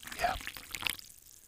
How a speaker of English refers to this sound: Y'all know what that sound means. That controversy is brewing. Man, let's go ahead and pour this thing up and get this motherfucker started. The sweet smell of controversy.